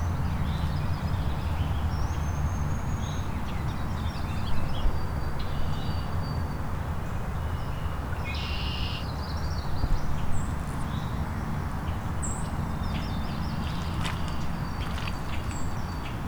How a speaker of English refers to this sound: Can hear a white-throated sparrow singing.